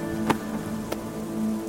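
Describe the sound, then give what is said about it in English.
Heavy rain pours down in a steady, even hiss, broken by two sharp drip-like hits, one early and one near the middle. A faint low hum runs underneath, with no voices. “It kept me out of the rain a little, even though I was already drenched.”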